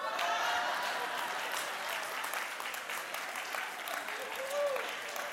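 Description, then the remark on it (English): An audience claps steadily for about five seconds, a dense, even wash of many hands at moderate loudness, holding level from start to finish with a faint murmur of voices mixed in. “So quit clapping.”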